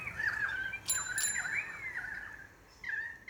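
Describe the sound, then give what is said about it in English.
Bikes pass by as a bicycle bell gives two quick bright rings, leaving a clear lingering tone, while warbling birdsong carries on throughout. No one speaks. “And people whooshing past on their bikes.”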